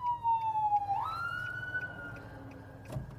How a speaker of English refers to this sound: And a fire truck's going to go by.